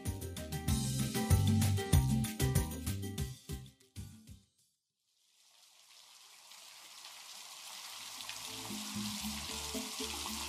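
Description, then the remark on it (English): Music plays and stops, and after a short silence heavy pouring rain in Cali fades in as a dense, steady hiss that gradually grows louder, with occasional low thumps beneath it. “It's pouring rain, but they don't mind.”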